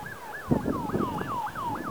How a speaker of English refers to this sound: I'm hearing sirens now too. All this noise. Usually when I hear sirens, I say a prayer for whoever that's affecting. God bless the people that the sirens are going after. God bless the people that are driving those vehicles.